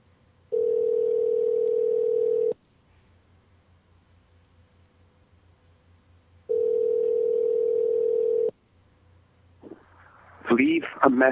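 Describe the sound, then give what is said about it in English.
Two long, steady ringback tones of an outgoing phone call sound about four seconds apart, with quiet line hiss between them, and no one picks up; a voicemail greeting briefly starts right at the end. “You never answer the phone. Why will you not answer the phone?”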